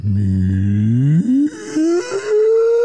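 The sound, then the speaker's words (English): A human voice does a long, low, moaning whale-call imitation, meant as the whale from Dory, sliding gradually upward in pitch over about three seconds, loud, with brief breaks near the end. “I was going for a Dory and the Whale, really.”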